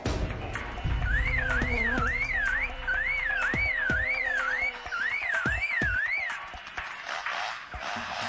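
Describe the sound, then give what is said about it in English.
A superb lyrebird mimics a car alarm: three loud bursts of a fast up-and-down warbling tone, with sharp knocks and clicks scattered underneath. “A car alarm.”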